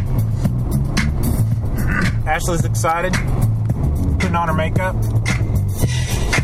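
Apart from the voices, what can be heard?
car interior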